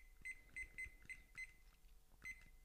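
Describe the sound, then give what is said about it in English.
A kitchen timer being set to 7 minutes gives a series of short, high electronic beeps as its buttons are pressed, five quick chirps in rough rhythm, then a pause and one more beep, fairly quiet. “This timer, by the way, I think is supposed to be for cooking, but sure, we'll use it for a wee 7 minutes in heaven.”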